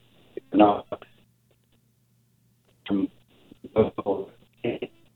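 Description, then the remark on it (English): A caller's mobile phone line breaks up into short, choppy fragments, cutting off abruptly, with a long stretch of dead air between the bursts of muffled speech. “your phone's cutting out again.”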